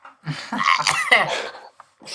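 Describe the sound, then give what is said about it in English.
A harsh coughing fit: several rough, strained bursts run together for about a second and a half, a short pause, then another cough begins. “It's not like I accidentally disconnected to stop myself from screaming into the mic while coughing.”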